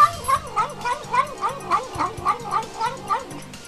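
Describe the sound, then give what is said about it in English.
A cat meows over and over in a quick, steady rhythm, about ten short wavering cries in a row, fairly loud, with a faint low hum underneath. “Would you rather have Gizmo, E.T., or this cat?”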